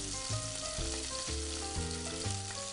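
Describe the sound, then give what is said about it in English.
Sea bass frying in olive oil, pressed gently so its skin stays in contact with the oil, gives off a steady, dense sizzle with constant crackling hiss, and soft background music plays underneath throughout. “Make sure that the skin has a nice contact with the oil so that we get a nice crispy skin.”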